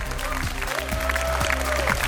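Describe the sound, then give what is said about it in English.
The audience of the Adam Ritz Show, recorded on the Tulane campus, applauds steadily, a dense wash of many hands clapping at an even, fairly loud level, with a faint low tone humming underneath. No one speaks. “Thank you so much for that round of applause.”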